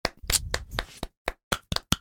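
A short burst of hand clapping, a quick busy flurry of sharp claps that thins out into a few scattered, separate claps toward the end. No voices are heard.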